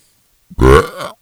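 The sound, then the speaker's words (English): A single loud beer burp, a deep throaty belch lasting about half a second with a short grunt-like start and a rising, trailing tail, heard on its own without talking. “there is the beer burp right there.”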